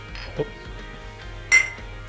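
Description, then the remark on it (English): Glasses clink together in a toast, one bright ringing chime that fades quickly, preceded by a softer knock, against quiet background noise with no talking. “Cheers, pleasure. Cheers, gentlemen.”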